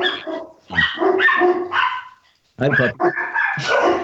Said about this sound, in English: Somebody's at our door. Three rescue dogs. Hey, Shazam, stop it.